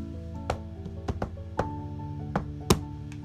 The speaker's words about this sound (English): Then I knocked on the door.